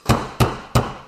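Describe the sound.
Three firm, evenly spaced knocks on the front door of a house in the morning, the door opening straight into the living room. Each knock is a loud woody thud with a short ringing decay, and there are no voices.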